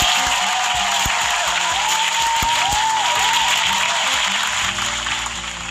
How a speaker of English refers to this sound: It's December 29th, and we got about two more days, you guys, and then we will be heading to a new year, 2021, the age of Aquarius. So you guys definitely need to clap for that.